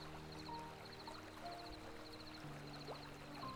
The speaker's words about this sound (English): The water is finding its way along this brook with great efficiency. No stopping the flow of this beautiful brook. Look at the water with me.